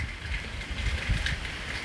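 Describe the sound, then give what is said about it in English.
Light rain that has just started falling outdoors, a steady soft hiss with a low rumbling undertone and no voices, holding an even, fairly quiet level throughout. “Again, I'm outside and it started to rain a little bit. I mean, I'm in a dry spot, but you still might hear the rain.”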